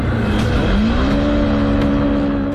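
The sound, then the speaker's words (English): A race car engine revs loud during Round 1 of the SA Short Circuit Series at Brenton Car Circuit on a Sunday night, its pitch climbing steadily in a continuous roar, with the broad rumble of other motors and track noise filling the background. “Welcome to the SA Short Circuit Series, Round 1, here at Brenton Car Circuit.”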